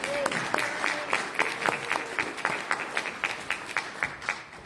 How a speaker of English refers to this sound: But I'm going to turn the microphone over to Jeremy now. So if everybody could give a big round of applause to Jeremy.